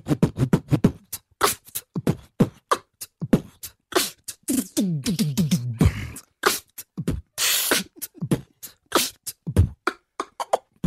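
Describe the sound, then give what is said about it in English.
A voice beatboxes a full drum kit: a fast, steady stream of punchy kick-like thumps, sharp snare clicks and hissy hi-hat bursts, with a short stretch of buzzing, pitched vocal sound midway, performed alone. “I'm just wondering, do you know how to do the sound for each of those? Well, okay, drums, I guess it'd be like a...”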